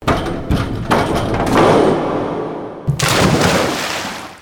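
A diver bounces on a diving board, several springy thuds about half a second apart, then after a brief pause a loud, rushing splash into a pool.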